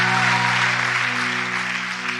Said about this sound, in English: Somebody shout, yes, Lord. Give him one more hand clap and you can be seated in his presence. Thank you, worship team.